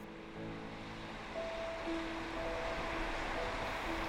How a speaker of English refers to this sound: All night, the wind blew over my tent and the waves rolled ashore.